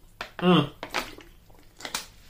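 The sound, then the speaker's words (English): A quick sip of water: a short slurp and gulp with a brief hum-like tone, followed by soft wet mouth clicks and a faint swallow, with no talking. “But yeah, let me take this sip of water right quick.”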